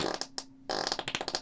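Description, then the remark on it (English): A wet, sputtering arm fart made with the hand against the arm, a rapid burst of flappy squelches with a brief pause midway, fairly loud with no talking. “That's how you fart.”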